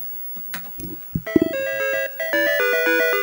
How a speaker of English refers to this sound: Bouncy music notwithstanding.